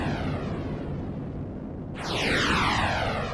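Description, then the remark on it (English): A continuous, broad rocket roar rumbles steadily, then swells louder at about two seconds with a sweeping, whooshing whine as the blast-off builds. No voices are heard. “It's time to strap ourselves in place as we blast off into outer space.”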